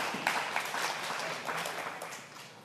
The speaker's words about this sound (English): You should be clapping. You're in because of Jesus.